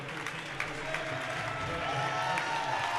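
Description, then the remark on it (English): A large basketball arena crowd applauds loudly as the Aggies' starters come off the floor during a game against the Tigers, dense clapping and crowd noise holding steady throughout, with indistinct voices mixed into the roar. “The Aggies, who started this game, will come off the floor to a loud applause.”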